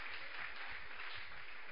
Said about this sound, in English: Shout, my angels are working. Clap your hands and take back your seat.